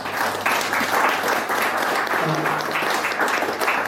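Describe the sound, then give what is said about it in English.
A crowd in Otapoti applauds the committee of a multicultural council, many hands clapping in a dense, even wash of noise that holds at a fairly loud level throughout, with a faint low hum underneath. “Your work to support the ever-growing multi-ethnic work network in communities in Otapoti is to be admired, actually, and I think you deserve, all of the committee deserve a big round of applause for that, actually, please.”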